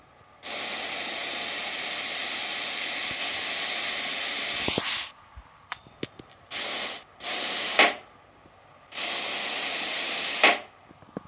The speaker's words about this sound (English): Let's start. I'm going to start inflating balloons.